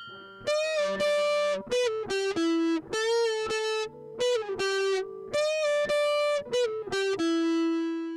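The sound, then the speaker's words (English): Two thick, fuzzy distorted electric guitars play a loud melodic riff in choppy phrases with brief gaps, their buzzing harmonics filling the upper range, with no vocals. “what really grabbed my attention was the distortion-heavy twin guitar attack”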